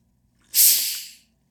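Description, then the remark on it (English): A single loud slurping sip of water, a sharp airy hiss that starts abruptly and tapers off over under a second, with no talking. “This summer, well, I'm gonna take a sip of my H2O.”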